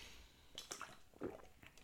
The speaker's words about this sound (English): I'm drinking water before I say this.